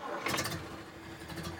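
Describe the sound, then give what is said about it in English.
Frankie Yale's car engine cranks and catches, with a brief burst of starter noise settling into a steady low idle rumble, moderately loud. “After receiving a strange call about his wife, Frankie Yale went to his car to drive home as quickly as possible.”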